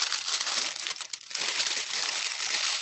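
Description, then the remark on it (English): A sheet of paper is twisted and crumpled, a continuous crackling crinkle with a brief lull in the middle before the rustling resumes. “Twist the corners of the paper around the waste”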